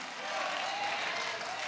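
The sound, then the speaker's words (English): A church audience applauds as tithers are asked to praise God, a dense wash of many hands clapping at an even level for the whole stretch, with no voices standing out. “Not everybody could clap.”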